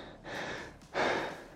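Two heavy, rasping breaths, a longer one followed by a louder, forceful exhale, from someone breathing hard in the last minute of an exercise effort. No talking.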